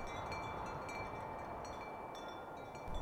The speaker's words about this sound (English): What is the most beautiful sound? Probably the wind, like, rushing through the trees. I guess, like, the wind is pretty nice. Wind blowing.